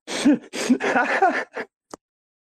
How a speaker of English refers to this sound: And I'm sniffling because I'm, you know, emotional.